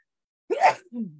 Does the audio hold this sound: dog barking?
no